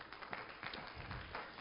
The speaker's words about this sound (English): Stand with me and clap your hands unto the Lord. Hallelujah.